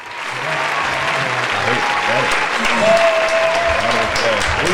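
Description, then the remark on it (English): A steady wash of canned applause and clapping, played from an applause button, runs for several seconds at a loud, even level, with scattered voices and a faint whistle-like tone mixed underneath. “I think I got an applause button.”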